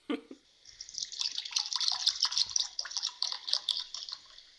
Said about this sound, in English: That pour sounded like you did it in the phone.